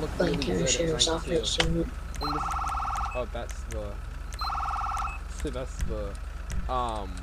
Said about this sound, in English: The fire siren. Fire sirens are a lot different than the cop sirens.